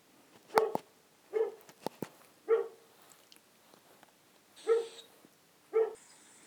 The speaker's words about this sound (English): I'll just ask my dog to stop barking.